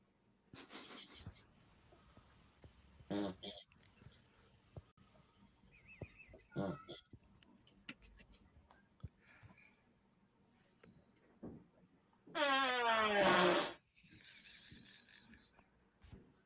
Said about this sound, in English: Was that the mom farting the whole time? This person, I'm assuming, is a dude. Right, but is it the other person that's doing the farting?